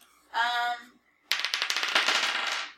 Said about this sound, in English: I rolled her dice just for fun, and I got a 5.